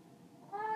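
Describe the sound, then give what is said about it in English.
A single short, high-pitched mew from a small box of kittens rises out of a soft background hum near the end, brief and fairly quiet, with no talking. “A little box of kitties.”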